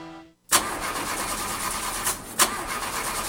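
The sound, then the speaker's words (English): A car engine cranks with a continuous grinding whir that begins abruptly after a brief silence, fairly loud, with a couple of sharper bursts but never catching into a running idle. “Car not starting? Yeah, it just started doing this, and I don't know who to trust to take care of it.”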